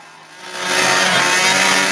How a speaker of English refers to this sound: I know y'all seen that video when he's revving his motorcycle up for his boy in the casket, RIP.